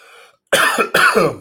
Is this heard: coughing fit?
yes